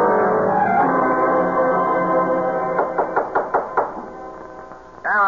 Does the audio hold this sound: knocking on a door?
yes